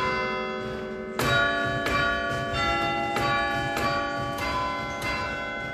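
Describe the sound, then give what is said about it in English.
Bells of the Collegiate Church of St. Nicholas in Galway ringing across the city at 7 o'clock in the evening with strong, resonant tones, new strikes arriving roughly every half to two-thirds of a second over a sustained ringing hum; rung by a 17-year-old; no voices present. “bells of the Collegiate Church of St. Nicholas in Galway have rung across the city every night this week at 7 o'clock for 7 minutes, this to mark the 700th anniversary of the founding of the church.”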